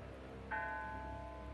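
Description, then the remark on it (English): A single strike of the bell of a tiny church on a hill, striking three o'clock, rings out; its bright, resonant tone lingers and slowly fades over a faint, steady background hum, with no one speaking. “Away across the field, in a tiny church alone upon the hill, a bell struck three.”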